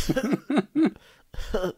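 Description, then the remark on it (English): A voice imitates coughing up blood: four short, throaty, gurgling coughs, the first three in quick succession, then a pause before a final sputter. “I cough up a bunch of blood.”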